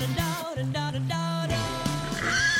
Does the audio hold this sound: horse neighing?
yes